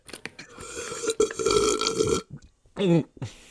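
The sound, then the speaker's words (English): A long, loud, rumbling burp after drinking too much water, drawn out for about a second after a few short clicks and gulps, followed by a brief voiced exclamation. “That was too much water.”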